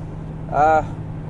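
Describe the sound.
A steady, low engine drone fills the inside of a 2006 Chrysler being driven on a cold February morning, with a brief burst of a voice partway through sitting over the constant hum.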